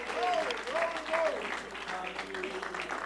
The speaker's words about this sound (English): Shall we clap our hands and give God praise right now?